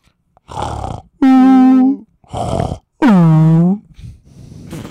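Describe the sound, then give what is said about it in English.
A voice imitates Olivia Chow snoring through two full cycles, each a rough, rattling inhale followed by a loud, drawn-out groaning exhale that slides downward in pitch. It is exaggerated, with no other talking. “That's what Olivia Chow sounds like when she snores.”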